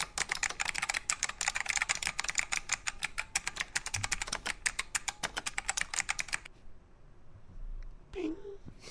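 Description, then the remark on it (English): Rapid, steady clacking of fingers typing on a computer keyboard, crisp, for several seconds before stopping abruptly; a brief voice sound follows near the end. “Are you typing an email to, you see the note from Pimento?”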